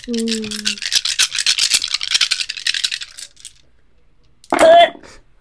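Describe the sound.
Dice rattle and clatter in a quick, dense burst of clicks for about three seconds, loud, as dice are rolled for a conflict roll, followed by a short pause and a brief voice sound.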